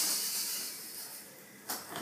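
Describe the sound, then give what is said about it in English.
A steady, bright hiss of fizzing soda being prepared as a chaser for a shot, fairly quiet, with a brief louder burst of crackling bubbles near the end. No one speaks. “I'm preparing my chaser. Ooh! That's fizzy.”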